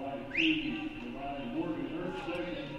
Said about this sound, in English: Shot no good. Whistle blows and a foul called against Columbia. Columbia commits the foul.